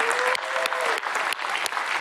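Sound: round of applause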